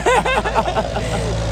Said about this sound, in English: here we go, we've got a tractor, this is fun. Speak louder. Outdoors. Well, at least it proves we're in the countryside.